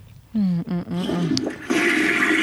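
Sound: toilet flushing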